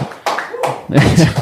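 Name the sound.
clapping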